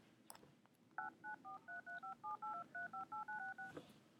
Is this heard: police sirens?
no